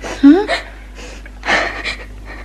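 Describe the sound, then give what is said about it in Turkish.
A young girl cries in short, broken bursts: a wavering whimper first, then gasping, breathy sobs with brief pauses between them. “Ağlaman boşuna küçük hanım.”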